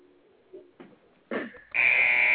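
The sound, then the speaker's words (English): A few short low thumps and a brief rising tone lead into a loud, harsh, sustained electronic buzzer blaring steadily to the end: a game show buzzer that sounds when a contestant uses up all 30 seconds to answer rapid-fire questions, ending the question. “is the buzzer, and that'll end the question”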